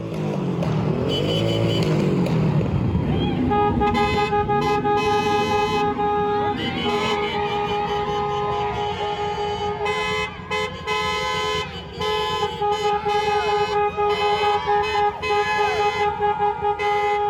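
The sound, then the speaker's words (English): A vehicle rumbles past, then car horns blare almost nonstop as cars drive by a mostly silent protest march in Grand Rapids, several overlapping steady tones honking loudly for most of the stretch, with brief breaks near the end. “The Grand Rapids protest was silent at most parts, with some chanting, but mostly silent as some cars drove by and honked.”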